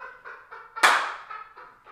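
A bird squawks and honks in a rapid series of harsh, nasal calls, with one louder, raspier squawk in the middle; clear, no talking.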